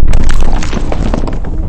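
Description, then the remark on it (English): A deep explosion somewhere underneath rumbles on continuously in the distance, a heavy, loud low roar with crackling texture running through it for the whole moment, no voices present. “The room violently shakes and you guys can hear what appears, sounds like in the distance, an explosion underneath you guys.”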